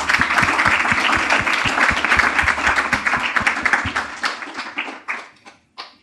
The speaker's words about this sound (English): I think that deserves a big clap.